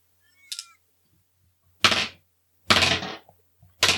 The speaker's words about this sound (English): Then I'm going to roll, then I'm rolling three dice here.